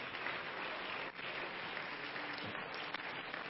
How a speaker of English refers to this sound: Let's clap our hands and worship the Lord together today.